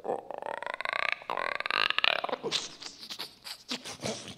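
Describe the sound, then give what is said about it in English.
A voice imitates a frog with a long, buzzy, burp-like croak for a badger-frog creature, followed by a series of shorter, rougher snuffling bursts like a mammal's. No words are spoken. “You know, like a badger frog or whatever we just did, where you can do the frog sound, which is a.”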